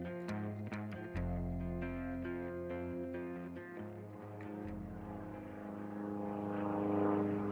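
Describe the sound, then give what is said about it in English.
A small turboprop airplane engine drones steadily, its deep harmonic hum holding for several seconds before swelling slightly in a rushing roar near the end. No one speaks. “their plane, a small turboprop aircraft, crashed into a hillside in Yellowstone National Park.”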